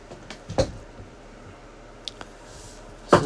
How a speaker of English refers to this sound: knocking stuff off my table here.